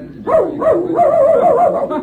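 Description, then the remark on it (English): A dog chasing a cat yelps and barks excitedly in a quick, continuous run of high, wavering yips, loud, with no talking over it. “look at that dog go.”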